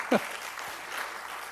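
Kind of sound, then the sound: crowd, audience clapping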